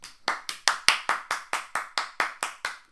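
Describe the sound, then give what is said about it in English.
Rapid, loud hand clapping: about a dozen sharp, crisp claps in a quick, steady rhythm, each one snapping out and fading before the next, with no voices. “Just like, fat, like at the peak moment of a standing ovation.”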